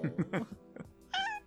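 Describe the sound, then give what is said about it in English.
A single short, clear meow from a female cat named Marcia rings out near the end, preceded by a few brief low vocal sounds. “If she's staying, this cat needs a name.”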